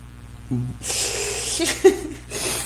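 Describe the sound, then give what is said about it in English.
A person makes a long, breathy hissing noise in imitation of a snake or a llama, preceded by a short low vocal grunt, with a faint chuckle mixed in near the end. “Is that the llama? Yeah. Oh my God, I didn't even think about that. I was thinking more snake, but yeah.”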